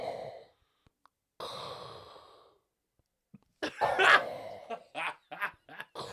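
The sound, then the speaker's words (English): A person imitates Darth Vader's heavy, mechanical-sounding breathing with two drawn-out, raspy breaths, then breaks into short bursts of laughter and coughing. “Darth Vader Breath Test”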